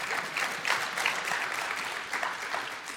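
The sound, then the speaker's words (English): A crowd applauds steadily, a dense wash of hand claps at an even moderate volume with no voices over it, continuing throughout without fading. “One applause.”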